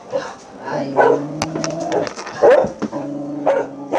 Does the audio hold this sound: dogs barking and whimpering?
yes